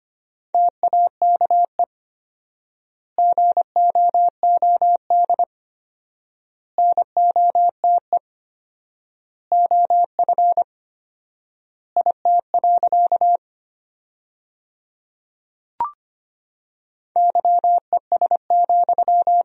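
Rapid Morse code tones at 25 words per minute sending sentences from the top 500 words with 4x word spacing, a steady mid-pitched beep keyed into quick dots and dashes, sent in bursts separated by long silent gaps, with one brief click partway through.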